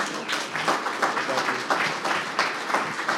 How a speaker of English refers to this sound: Give a round of applause, please.